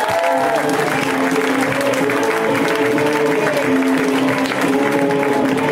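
Loud, steady audience applause at a comedy show as the next comedian is brought out, with dense clapping that holds for about six seconds and a few voices and cheers blended into the crowd noise.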